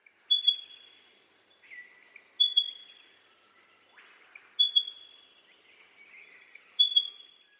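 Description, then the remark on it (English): A spotted pardalote calls alone, repeating a thin, high whistled note about every two seconds, each bright note trailed by softer, slightly lower tones. Four phrases in all, no voices. “If you guessed spotted pardalote first and striated pardalote second, you were correct.”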